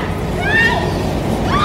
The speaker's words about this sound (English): Yeah, and he knocks her over onto the ground and then tries to take it from her while she's screaming.